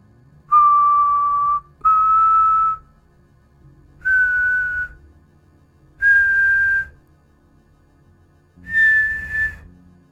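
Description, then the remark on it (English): Five long, plaintive whistled notes from a man far off in the distance, each held about a second and stepping slightly higher in pitch, separated by short pauses over a low, rough rumbling background, interspersed with the snapping and snarling of a pack of hounds. “A strange, mournful sound that was interspersed with the snapping and snarling of the hounds.”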